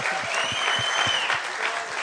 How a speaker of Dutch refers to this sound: Dat was een half applaus, mensen. That was a half cheer. Kom, laten we de band een goed applaus geven. Let's thank them.